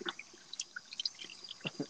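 A faucet runs steadily while hands splash and rub beneath it as someone washes their hands, with scattered bright drips and gurgles. The water sounds fairly quiet, with no talking.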